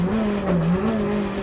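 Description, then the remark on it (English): A monster truck engine roars and revs loudly, its deep droning pitch dipping briefly and rising again, with a gritty edge of squealing tires over the steady rumble and no voices. “Smash and bash some of the biggest monster trucks around.”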